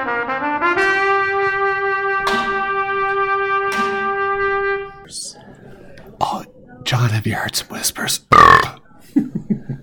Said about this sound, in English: Oh, yeah, don't worry about that burp.